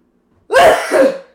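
cough

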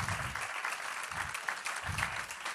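church audience applause

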